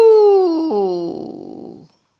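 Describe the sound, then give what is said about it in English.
A voice imitates a drunkard's dog howling at night: one loud, drawn-out falling 'ooh' that drops in pitch partway through, then turns rough and gravelly before stopping abruptly, heard alone. “His dog would howl, "Ooh! Ooh!"”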